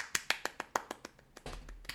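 A quick, steady run of about nine sharp hand claps, evenly spaced and fairly loud, followed by a denser, smeared patch of clapping noise at the end.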